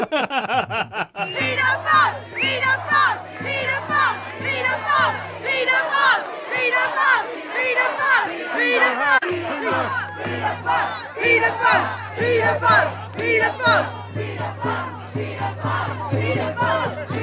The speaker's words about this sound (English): By the way, after I left, the rally ended up outside Buckingham Palace yelling abuse through the gates at the royal family.